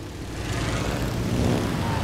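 A propeller engine on a biplane drones steadily and loudly, a continuous low rumble with rushing wind-like noise on top, holding even for the full two seconds.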